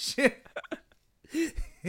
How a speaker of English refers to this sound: I got smoker's cough.